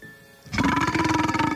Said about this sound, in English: My God, well, at least when you belch, would you belch the other way? It's coming up through the covers here. Sorry, I'm a man for crying out loud.